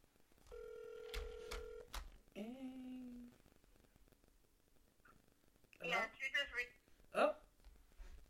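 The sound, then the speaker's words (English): A steady phone dial tone with quick keypad beeps, followed by a brief electronic call tone; after a pause, muffled voices briefly chatter, and the call seems to go unanswered. “Nobody on my phone answering.”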